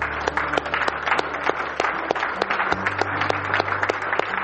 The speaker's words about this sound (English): Let us give thanks to Him through our applause. Thank you, Jesus.